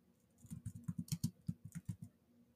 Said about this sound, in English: And my keyboard decided to just type W and L.